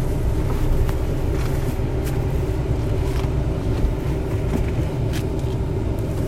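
A car's engine and road rumble drone steadily for several seconds as the car pulls up to pick up a friend and give him a ride, low and even in level, with a few faint higher clicks and rattles scattered through it and no voices.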